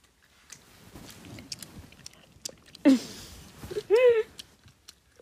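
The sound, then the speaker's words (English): Crisp ASMR chewing close to the microphone with soft wet clicks and crunches for a couple of seconds, followed by two short, loud voiced vocal squeaks or exclamations. “Oh, to hear some chewing ASMR.”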